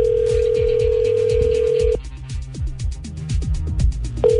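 An outgoing call to the Taco Elf rings on the line: a steady electronic ringback tone holds for about two seconds, pauses, then starts again at the end, all over rhythmic background music.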